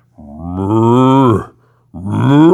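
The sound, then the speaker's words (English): A man's voice imitates a bull's moo in two sustained, rising lowing calls, the first long and loud, the second starting after a short pause; he is the voice of the bull on a Disneyland ride. “That was, and they recorded that, and that's my moo.”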